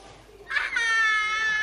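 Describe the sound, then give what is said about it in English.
After a brief quiet moment, a child screams into a microphone, a loud, sustained, high-pitched scream that holds steady and strained to the end. “How would you do it? Scream. You'd scream.”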